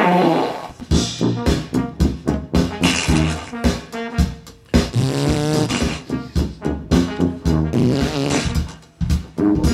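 A rapid, rhythmic string of loud farting noises, buzzy and tonal with wavering pitch, played almost like a melody and continuing without pause for the whole stretch.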